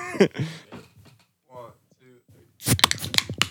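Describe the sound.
People talk briefly, then a cluster of sharp metallic clicks and snaps rings out as aluminum cans of yerba energy tea, with Buzz Lightyear on the can, are cracked open one after another.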